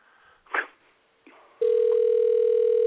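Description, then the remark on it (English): A brief rustling bump, then a phone rings with a loud, steady electronic tone that holds unbroken for over a second, clear, with no one talking. “Hey, your phone's ringing. Hey, answer the phone.”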